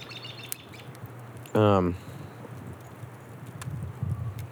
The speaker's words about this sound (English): I was hoping to get some nature sounds if they can come through. It's a little windy. But I think you can hear some birds and shit.